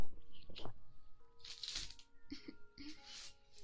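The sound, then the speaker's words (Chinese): Tapping and handling of a face cream jar: a string of sharp clicks and crisp scratchy taps, some louder bursts, in an irregular rhythm with a faint voice murmuring underneath. “做一个面霜的声音。”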